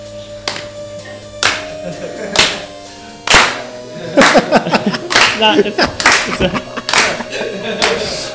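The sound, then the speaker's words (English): Sharp hand claps ring out, first a few evenly spaced single claps, then a looser, busier burst of clapping with voices chattering underneath over a faint steady hum. “It's just some spontaneous clapping action.”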